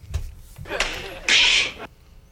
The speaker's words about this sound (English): Fresh Prince. You are correct. The handshake.